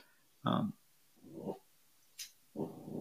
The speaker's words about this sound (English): That is Lily. I know, that's a wiener dog.